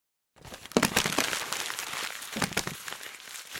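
Papers rustle and crinkle in a steady flurry of dry, crisp handling as someone rifles through a stack of documents to retrieve a paper, with no voices.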